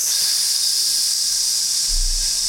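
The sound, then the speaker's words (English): A loud, steady hiss, like gas escaping under pressure, runs continuously and unbroken from start to finish, with no voices over it. “I think there's a gas leak in here.”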